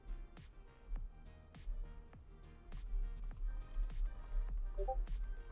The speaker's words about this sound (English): I'm typing my answer.